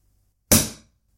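A bottle of Moët champagne is opened with one sudden pop that trails into a brief, airy hiss fading out in under half a second. No voices, just the single release.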